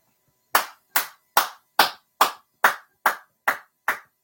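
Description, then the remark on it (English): Nine crisp, loud hand claps at a steady, even pace, each a sharp slap that fades quickly, with no talking underneath. “Clap it up for that man. Clap it up.”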